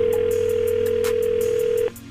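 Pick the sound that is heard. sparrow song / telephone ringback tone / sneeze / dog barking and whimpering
telephone ringback tone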